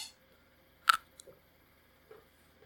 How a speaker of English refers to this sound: When he looks in a kernel of corn, whether it's in the truck, dumping in the pit, or he went and got some ears, he's always got to take a kernel and put it in his mouth and give her a crunch, see what she does.